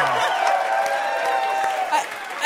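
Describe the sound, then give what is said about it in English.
An audience applauds steadily at an even level throughout, with some cheering and whooping voices mixed into the clapping. The clapping swells briefly right at the end. “I've never gotten so much applause for doing so little.”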